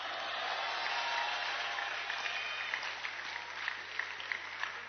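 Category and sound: crowd, audience clapping and applause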